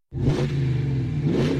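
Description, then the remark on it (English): The V8 Hemi engine of a new Ram 1500 pickup truck roars to life and revs, its deep rumble holding steady before swelling again in a second surge, loud with no one speaking. “The new Ram 1500 pickup truck comes with a powerful V8 Hemi and a max brake towing capacity up to 4.5 tonnes.”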